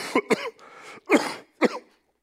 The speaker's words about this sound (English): Sorry, I coughed. It's just a common cold I have this week, not COVID. I'm just getting over it.